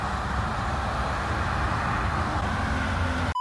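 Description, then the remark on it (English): Steady, loud roar of road traffic, a continuous rumble of vehicles passing along the side of Hall Road with no distinct individual pass-bys, cutting off abruptly at the end. “You hear cars? Yeah. That's because I'm on the side of Hall Road.”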